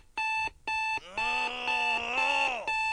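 household object, alarm clock ringing

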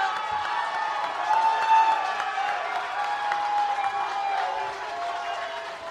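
crowd, crowd cheering and applauding

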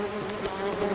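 insect, bees buzzing

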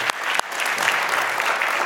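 crowd, audience round of applause

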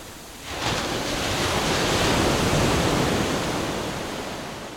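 nature, ocean waves crashing

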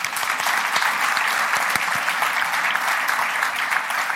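crowd, audience clapping

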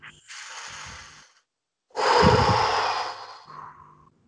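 human body sound, deep breaths

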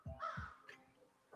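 bird, bird calling outside

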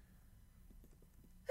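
human body sound, sneeze

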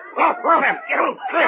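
animal, dog yipping and whimpering

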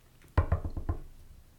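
impact, knocking on wood

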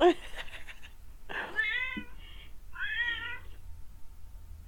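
animal, cat screaming and meowing

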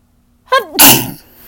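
human body sound, human sneeze

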